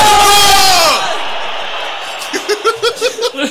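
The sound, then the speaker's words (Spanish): A loud burst of a stadium crowd cheering a goal, cut off abruptly after about a second, followed by quieter rhythmic laughter. “Estábamos en una cancha, boludo.”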